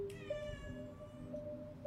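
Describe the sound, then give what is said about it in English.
A male cat named Smoko lets out a drawn-out, high meow, its tone bending downward, with faint background hum and a low rumble underneath and no talking. “He looks like a panther, man. Cat. Guy, boy cat.”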